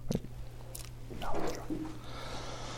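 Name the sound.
speaker sipping water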